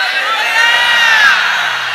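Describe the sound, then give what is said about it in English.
An audience shouts hallelujah together in response to a preacher, a loud sustained wash of many overlapping voices with whoops and cheers rising and falling across two seconds. “If you know that the new thing that God wants to do will define your 2019, shout hallelujah.”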